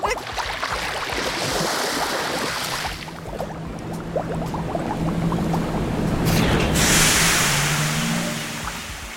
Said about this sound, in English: Is that a tiny submarine that just pulled up and a small person about your age that just welcomed us aboard?